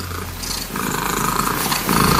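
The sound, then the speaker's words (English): A 14-year-old cat named Bella purrs loudly and continuously, a steady rumble measured at 54 to 59 decibels to achieve a record, growing slightly stronger over about two seconds, with no voices. “14-year-old Bella produced a purr that measured 54 to 59 decibels to achieve the record.”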